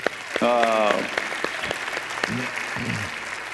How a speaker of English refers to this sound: We're going to give you another hand clap and say, God bless you. Here we go.